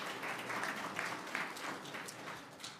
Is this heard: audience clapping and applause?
yes